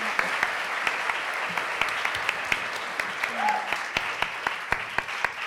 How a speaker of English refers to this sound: First, give a round of applause to all the speakers.